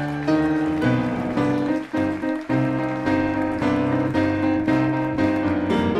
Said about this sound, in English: I love the way everybody's clapping along like it's a wedding. It's fantastic. No one's ever done it before.